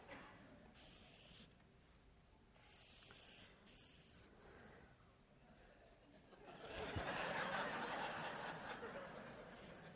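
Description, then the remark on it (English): Scratchy pen strokes on paper as a boat is drawn: a few short bursts of drawing separated by pauses, then a longer, steady stretch of scribbling toward the end. No one speaks. “I'm going to try to draw a boat.”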